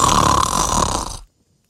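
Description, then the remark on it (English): A single loud, high-pitched snore from a small creature asleep in a valley, a raspy nasal rattle held for about a second before cutting off into silence. “As the others are asleep, the sound of treble snoring crosses the valley.”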